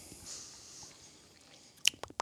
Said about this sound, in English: That last sip I just took, I got espresso bean on the back end.